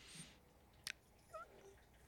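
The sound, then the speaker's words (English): A cat named Kevin gives a short, faint meow, preceded by a brief sharp click; no one speaks. “Kevin's a cat.”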